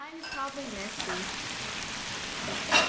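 Bulgogi sizzles steadily on a hot tabletop grill at a table in a home in Montgomery, a dense crackling hiss, with faint voices murmuring briefly at the start and a louder sputter near the end.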